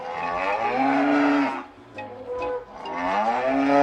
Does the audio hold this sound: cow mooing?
yes